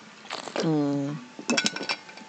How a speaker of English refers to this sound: Sorry, I took a drink of water.